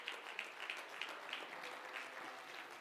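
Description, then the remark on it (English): A church audience gives the Lord a hand clap of praise as people are being seated, clapping together in a steady, fairly quick rhythm, with sharp repeated peaks over a dense wash of many hands. The applause is moderately loud and continuous, with no voices. “Let's give the Lord a hand clap of praise as you're being seated.”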